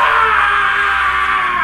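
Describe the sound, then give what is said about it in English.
A loud, sustained high-pitched, girly-sounding scream that holds steady for nearly two seconds, piercing and shrill, with no talking around it. “got a really girly scream.”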